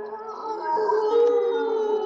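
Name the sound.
dogs howling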